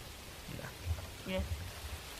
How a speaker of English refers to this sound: Raining. Heavy rain. Very loud.